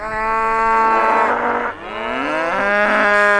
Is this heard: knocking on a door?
no